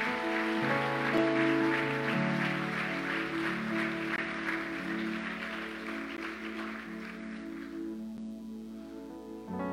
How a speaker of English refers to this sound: Come on, let's give all those wonderful people a big hand clap.